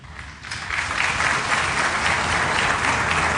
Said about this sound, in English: Not everyone applauding, I know. No, a smattering in the back.